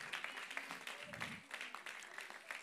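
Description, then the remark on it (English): A church audience claps their hands unto God, a dense, steady wash of many overlapping claps that holds at an even, fairly loud level, with a faint voice briefly rising beneath it. “Let's clap our hands unto God right now.”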